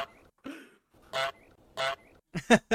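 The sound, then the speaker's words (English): A goose-honk sound effect from a soundboard: about six loud, nasal blasts, the first few spaced apart and the last three coming in a quick cluster, with no voices. “Look at that goose egg.”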